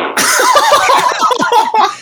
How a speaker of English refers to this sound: And now, as we alluded to earlier on in this episode, here is the fart segment from our previous conversation that we threw out because of a corrupted audio file.